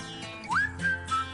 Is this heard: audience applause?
no